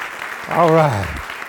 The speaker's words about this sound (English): Is that good? Give God a hand clap.